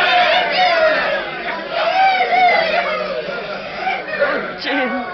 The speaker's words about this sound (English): Look how happy everyone is. Look at them cheering and shouting.